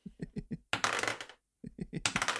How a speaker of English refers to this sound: You take 6 points of psychic damage. Oh, come on. I know, I rolled 3 ones. What are the chances?